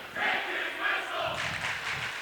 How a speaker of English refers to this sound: And you can hear the Cavaliers student section. It's Hawaiian night.